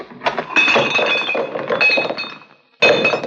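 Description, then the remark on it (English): Old glass bottles, saved to be sold for a penny each, clink and clatter together in a busy jumble of bright, ringing knocks, with a brief pause near the end before another burst of rattling glass. “I save old bottles to Regman, gives me a penny each for them.”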